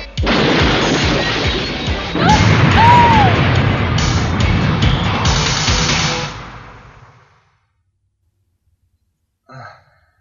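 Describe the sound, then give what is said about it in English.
In a video scene, Koji crashes a vehicle into a convenience store: loud roaring, rumbling noise with brief squealing tones, fading out after about seven seconds, then silence and one short thump. “Now take, for instance, when Koji crashes into the convenience store and tries to save face by buying a microwavable meal.”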